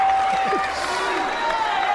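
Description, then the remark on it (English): A large political convention crowd fills the space with steady, dense applause and general hubbub as Rudy Giuliani comes out, sustained and fairly loud throughout, with a faint voice somewhere in the mix. “11 thank yous, even long after the applause had stopped.”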